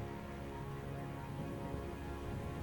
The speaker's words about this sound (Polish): Uświadamiam sobie też, że właściwie zbiera się mrzawka, więc schronienie będzie idealnym rozwiązaniem na ten moment. No w tym momencie już wali deszczem tak naprawdę.